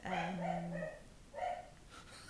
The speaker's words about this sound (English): Just to say, it's the office dog. Her name is Julia. It's Julia. Julie wants input.